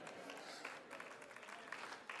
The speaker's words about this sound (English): That didn't get a very big applause, but it's the best thing I've said all day.